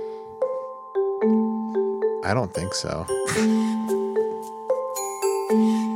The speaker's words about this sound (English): Sorry, I was just really wrapped up in the bells. Okay. The xylophones and such.